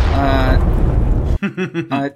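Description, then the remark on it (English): A stock explosion sound effect: a loud, booming explosion with a deep, rumbling roar lasting just over a second, then cutting off abruptly as a person starts talking. “Insert a stock explosion sound right here.”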